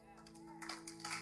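One person claps a few times, soft and somewhat irregular, over a steady low hum with faint background murmur.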